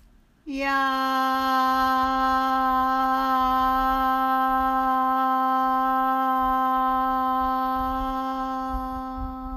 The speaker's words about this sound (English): We'll breathe in, and on the out breath, we'll use the tone yam as long as your breath allows.